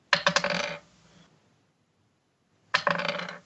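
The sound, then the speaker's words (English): Dice clatter across a hard table in two quick bursts during a tabletop role-playing game, rolled twice for a critical hit's damage: a rapid rattle of small hard clicks that settles, a pause of silence, then another lively roll. “Like, you roll two, double the dice.”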